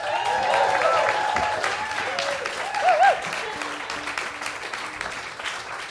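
A live show audience applauds when the applause sign is put up, with steady, dense clapping that continues throughout, while voices and a few rising whoops sound faintly beneath it.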